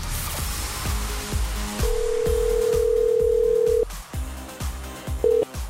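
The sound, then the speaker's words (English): A phone line crackles with short dialing tones, then a long steady ring tone holds for about two seconds before brief tones return, all over a low rhythmic background hum, as the morning show on Pure Country 94 phones its daily contest winner. “we have a phone call to make.”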